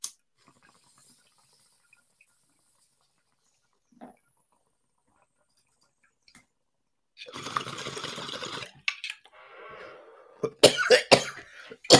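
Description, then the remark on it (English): After a long quiet stretch, a bong bubbles and gurgles for about two seconds during a steady inhale, followed by a short burst of loud, harsh, rapid coughs. “Going to rip this bowl first and just make sure that everybody gets in here.”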